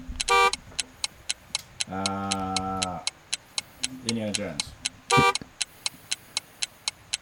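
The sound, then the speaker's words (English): Harsh game buzzers blare in short bursts during a timed trivia round on movies with snakes, with a longer, lower droning buzz in between, all over a steady ticking 15-second clock; a voice briefly speaks partway through. “Ignore those buzzers.”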